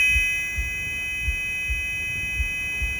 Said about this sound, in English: Buzzing in my ear.